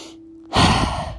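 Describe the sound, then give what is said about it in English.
After a brief quiet pause with a faint low hum, a deep, airy breath inhaled through the nose during a purposeful, intentional breathing exercise starts and rushes on steadily to the end, fairly loud, with no talking. “Purposeful, intentional breathing. Inhaling through the nose.”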